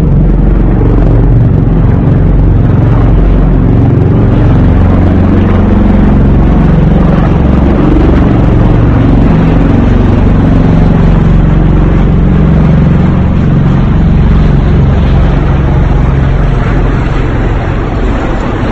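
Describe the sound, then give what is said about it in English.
Trump's helicopter, flying in California during a fundraising trip, roars loudly overhead. Its engine and rotor noise is a dense, steady rumble that fills the whole stretch without fading. No voices can be heard. “Is actually an adult flipping off Trump's helicopter because he was fundraising in California and they don't believe he should be out there.”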